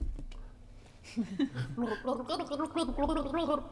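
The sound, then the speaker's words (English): A woman gargles water from a bottle to a song in a wavering, tune-like pattern, the bubbling gurgle rising and falling as if carrying a melody, moderately loud after a brief quiet start. “The bottle of water is open. Here we go. A good gulp there.”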